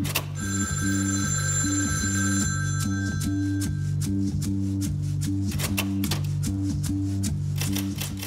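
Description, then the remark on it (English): A telephone bell in the next room rings steadily in loud, repeated bursts, with sharp mechanical clacks tapping irregularly over it. No one speaks. “she's typing the words, "The phone rang," and her fucking phone rings in the next room.”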